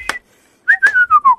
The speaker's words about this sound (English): That has to set you back five minutes in a set. Yeah, it's a full-on ringtone.